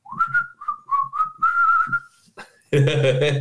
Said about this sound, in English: Whistle while you kill.